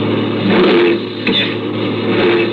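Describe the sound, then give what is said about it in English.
A big truck engine with failed brakes roars and revs loudly as the driver tries to shift into gear, its pitch surging and easing, with a brief harsh grinding crunch near the middle as gears fail to mesh. “I can't get the gears to mesh.”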